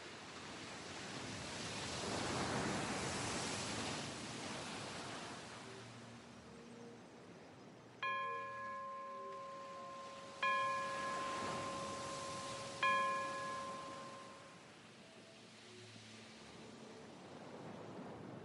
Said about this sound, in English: The ocean rhythm.